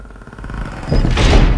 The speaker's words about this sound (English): I need the sound of a creaky, scary door.